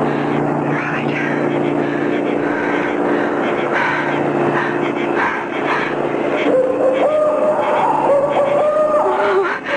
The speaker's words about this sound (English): Oh, that's a car coming. I'll get a lift.